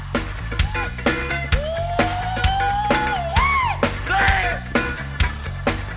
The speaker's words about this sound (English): I have to point out the very last scream from … at 12 minutes and 47 seconds